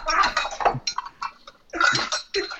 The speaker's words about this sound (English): these dishes. Sounds like you're making a whole meal.